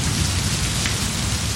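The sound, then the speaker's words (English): Heavy monsoon rain pours down in a steady, dense, loud roar, with drops drumming continuously on surfaces and no voices present. “To stand in the pouring rain after weeks of intense heat is liberating.”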